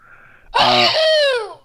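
A single loud sneeze bursts out suddenly after a brief quiet moment, its voiced "choo" trailing off over about a second, with no talking.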